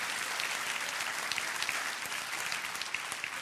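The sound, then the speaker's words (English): An audience claps hands together in steady, dense applause, many overlapping claps forming a continuous wash of sound that stays fairly even throughout, with no voices standing out. “Clap your hands and rejoice with that right now.”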